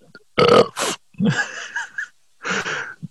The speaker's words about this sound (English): Why don't we spell down the email with burps? That's L. No, I can't do it. I'm going to throw up.